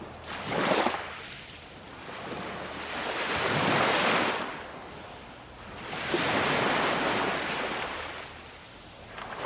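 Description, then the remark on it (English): Ocean waves roll in with a slow, steady rhythm, broad hissing surges swelling and receding about every few seconds, moderately loud with no voices. “Take a deep breath as you allow the sacral chakra to feel the loving caress of the ocean waves pass through it, joining it to the natural rhythm of the earth.”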